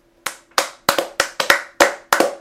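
Roughly nine sharp hand claps in an uneven, slightly accelerating rhythm, loud, each with a quick decay and a faint ring, with no talking.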